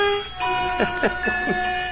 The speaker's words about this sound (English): And now Midnight has a fiddle, so go ahead, Midnight, and put it under your chin and play your little piece.